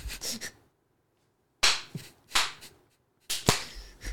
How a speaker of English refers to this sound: Ah, yes. Mm-hmm. With the clap. Well, hold on. Did you just clap three times before you clapped? Do that again.